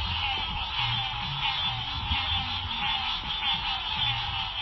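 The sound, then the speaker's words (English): A dense chorus of spring peeper frogs calling all at once in North Carolina's 3rd District, a continuous wall of shrill, high peeps holding steady throughout, with a faint low rumble underneath and no voices. “Frogs. Frogs. Now, the way that you described them earlier was peepers.”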